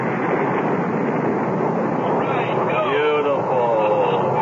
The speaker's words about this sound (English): Ignition sequence starts. All systems go. Looking good. 5, 4, 3, 2, 1, 0. All engines firing.